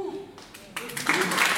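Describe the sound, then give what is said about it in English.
An audience breaks into clapping that swells quickly into a dense, steady patter of applause, following a brief stretch of a speaking voice. “If you clap for all of them, you'll be crying by the time I get through the weaknesses.”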